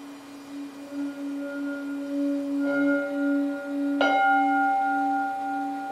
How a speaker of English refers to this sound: I will ring the bell now to end the meditation.